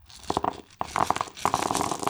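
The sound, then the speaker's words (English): Brisk rattling and rustling as dice are pulled from a pouch and rolled to make a check in a tabletop role-playing game, in two or three quick bursts of clicking and crinkling with no voices. “Get my dice out.”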